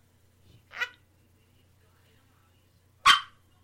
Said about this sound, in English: Sorry. That's Whiskey the dog.